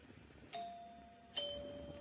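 doorbell chimes ringing

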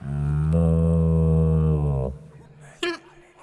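cow mooing

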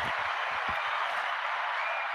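round of applause

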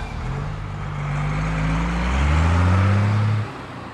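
bus engine driving away

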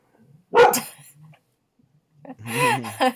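dog barking

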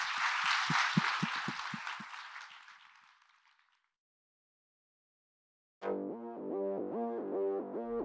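audience applause

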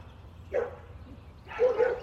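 dogs barking outside

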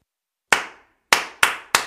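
hands clapping a rhythm

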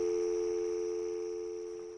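telephone dial tone

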